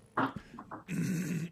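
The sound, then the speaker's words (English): A dog growls: a few short, sharp bursts followed by a longer, sustained rumbling growl, with no one speaking. “So we'll find out who the doggy is and what his name is.”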